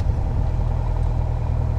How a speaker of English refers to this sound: This is an Piper Archer II aircraft. All right, now we're taxiing down the runway. It's a little cold, and we have a bit of a crosswind on takeoff. It's a bit windy today.